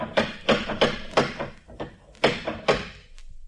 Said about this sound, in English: You could have heard that last knock out of the Farallones. Maybe he didn't hear you. Anyone in the neighborhood would have heard that knock.